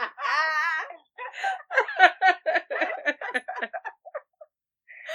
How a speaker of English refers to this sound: Sorry, my dog is making noise.